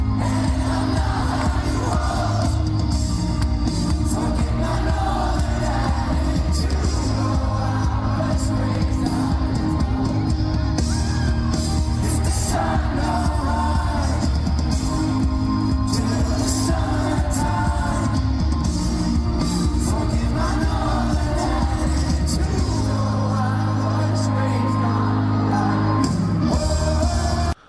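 concert crowd cheering

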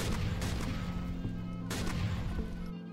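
gunfire sound effect

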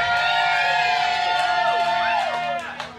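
crowd cheering

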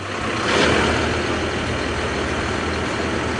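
tractor engine running

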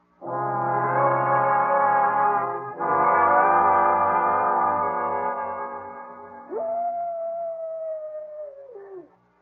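coyote howling

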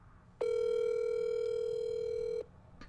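telephone dial tone

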